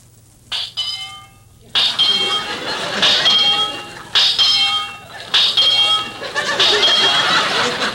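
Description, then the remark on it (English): Mr. Benny's peculiar heartbeat heard through a doctor's stethoscope, played as a comic effect: a series of bright, buzzy, tonal bursts, each swelling and holding before the next, instead of low thumps. “Well, that's certainly a peculiar heartbeat.”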